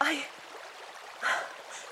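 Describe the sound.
A creek flows steadily in the background, a soft continuous rushing and trickling, with a couple of brief louder bursts that may be a voice over the water.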